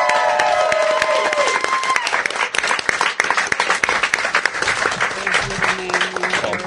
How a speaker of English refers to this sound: All right. Let's get some rings going, everybody. Let's get some applause. We're going to get some married.